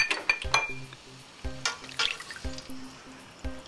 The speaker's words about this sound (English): Give it a good stir. And stir it for a little while because you want the flour and the cube bouillon to dissolve and get a little smooth.